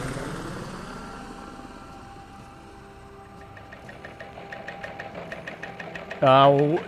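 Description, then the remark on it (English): A helicopter sound effect: steady rotor thumping and engine whine that grows more pronounced, with rhythmic chopping pulses, ending in a brief loud burst with a voice-like warble. “The helicopter sound effect that I've been using for weeks now”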